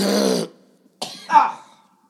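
A person coughs a few times in quick succession, fairly loud, with a short pause between a harsh first cough and a rougher, throaty follow-up.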